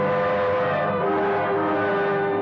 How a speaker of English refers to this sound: To make sure we were both thinking of the same thing to do, I followed her in the dark, watched her get into the car I rented from you, and drive off.